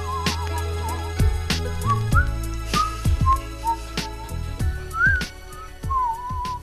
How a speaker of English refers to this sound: That was … and a little bit of your whistling.